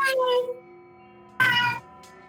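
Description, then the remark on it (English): Two loud cat meows about a second apart, the first drawn out and falling, the second shorter and brighter, over a faint steady hum; the cat is inside, on the other side of a door. “I think there's a cat inside.”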